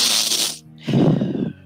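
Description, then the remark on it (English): A voice imitates loud sniffing of some powdered drug going into someone's nose by the barkeep at a bar: a sharp, hissy intake of breath, a short pause, then a second, lower and breathier snuffling burst. “No, you just hear a bunch of sniffing right up by the barkeep.”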